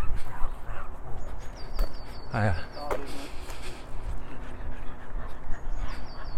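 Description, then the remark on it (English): A pug breathes loudly and raggedly, a wheezy, snorting rasp over steady outdoor noise, while a person briefly says a greeting. “Yeah, I'm just about to pass a pug. And look how loud it's breathing.”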